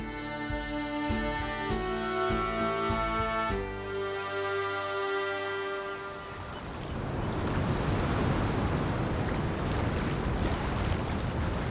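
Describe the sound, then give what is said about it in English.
Ocean waves wash steadily around a small rowboat bouncing on the waves, a loud, continuous rushing surf mixed with wind, following a few seconds of sustained tonal music at the start. No one speaks. “The four of you are on a rowboat, and Astra is getting to use her gust of wind to turn it into basically a motorboat”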